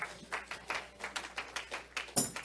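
A round of hand clapping from an audience: steady, fairly even claps repeating a few times per second for a couple of seconds, moderately loud, with no voices over them.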